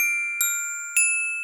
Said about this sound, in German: Dies ist ein Glockenspiel.